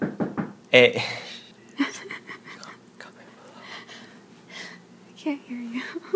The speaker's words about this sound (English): There was just a knock at the door, as you heard, and we're freaking out, but we think they're gone because we heard a knock in the distance.